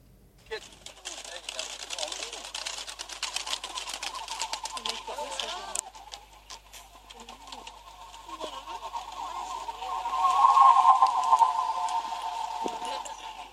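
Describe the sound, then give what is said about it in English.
Pigeon whistles drone overhead as a flock of pigeons flies past in Greenwich Park, a steady airy hum of overlapping tones that swells louder near the end, then fades slightly, over a faint outdoor background. “She took us on a strange audio adventure into pigeon whistling in 2013.”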